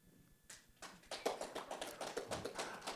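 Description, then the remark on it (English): Sparse, scattered hand claps from a small audience voting by applause for the best paper, starting hesitantly and then continuing as an irregular patter of quiet claps with no one talking. “I think you just got some pity claps.”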